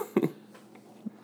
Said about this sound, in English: if he focuses on my commentary, it's a whole lot of me coughing.